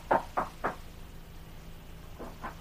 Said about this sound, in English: In the meantime, Riggs had gone to call on Jim Flood. We hear him as he raps on the door of Jim's home.